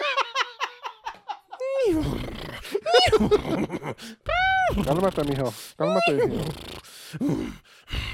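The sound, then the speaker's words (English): A person imitates a horse, opening with a rapid, quavering whinny of short pulses, then carrying on with loud, drawn-out vocal sounds that swoop up and down in pitch. “I'm a horse.”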